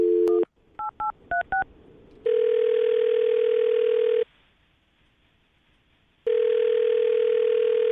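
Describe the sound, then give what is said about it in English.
A steady telephone dial tone, then four quick touch-tone key beeps, followed by a ringback tone that sounds twice in long two-second bursts separated by silence, as a man is phoned. Clear, with no voices. “All right, well, we're about to dial the phone him right now, get him on the phone, and find out why he's not calling you back, and if, in fact, that was an excuse to get out of your date, okay?”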